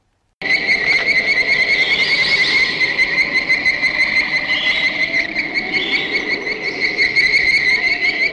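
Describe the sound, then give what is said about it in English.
A dense chorus of mainly bird-voiced tree frogs with occasional grey tree frog calls, recorded at Indian Island, Georgia, USA, in 1947: shrill, whistling trills overlapping without pause, loud, with a steady insect-like buzz underneath for the whole stretch. “Which is actually a recording of mainly bird-voiced tree frogs, which are native to southeast USA, with the occasional grey tree frog noise cropping up as well.”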